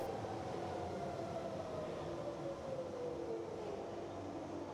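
A steady, loud rumble of a moving train heard from inside the carriage, on a train or London Underground tube journey to a health club in London, with a faint whining tone gliding downward over the continuous rattling roar. No one speaks.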